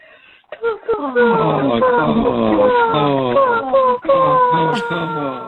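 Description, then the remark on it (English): A human voice in a voicemail message imitates crow calls: a loud, nearly continuous run of nasal, harsh caws with sliding, falling pitch, broken by one brief pause before a final stretch. “Our favorite nature sound is crows.”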